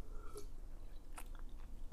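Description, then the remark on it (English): Quiet mouth sounds of someone sipping homemade blueberry lemonade, with a few brief wet slurps and swallows spaced across a couple of seconds, and no talking. “As I sip on some blueberry lemonade that I made.”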